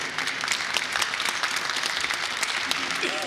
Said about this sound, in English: And honestly, yeah, you can clap for that.